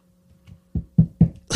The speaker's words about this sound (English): I just knocked on wood because I don't know why that nigga said that shit.